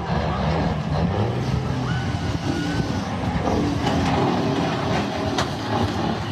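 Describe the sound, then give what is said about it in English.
A truck rams into a dead truck amid a loud, constant roar of heavy engines and grinding metal, with a sharp crunching hit near the end, sustained throughout. “You take a dead truck, smash one.”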